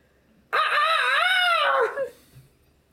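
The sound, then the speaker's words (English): A single loud rooster crow, strained and wavering with a high, harsh tone and sounding distressed, lasting about a second and a half before breaking off into quiet. “does the rooster call, but it sounds like distress because he's falling.”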